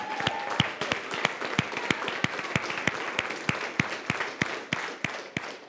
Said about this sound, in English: Somebody give Jesus a praise clap.